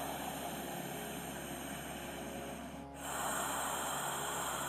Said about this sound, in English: You're going to get your spine nice and tall, and we're going to begin with ujjayi breathing. You're going to take a nice deep breath in and out.